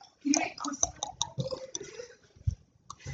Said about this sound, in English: Can y'all click your tongue? Can y'all click your tongue?